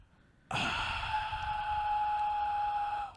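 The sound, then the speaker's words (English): A long, steady exhale of about two and a half seconds carries a thin, high whistle that holds one pitch over breathy air, then cuts off abruptly. “Like a whistle. The whistling know, like while exhaling.”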